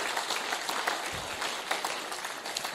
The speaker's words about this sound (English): And so why don't you just give her a round of applause as she makes her way up to the stage.